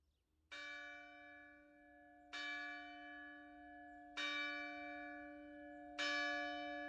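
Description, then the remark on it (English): A church bell tolls four times at a slow, steady pace on a Sunday morning in a village along the shore, each strike landing about two seconds apart while the resonant hum of the previous one still rings underneath. “On Sunday morning, while church bells rang in the villages along the shore”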